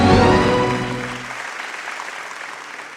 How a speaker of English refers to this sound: Give a round of applause for Reverend Bucky.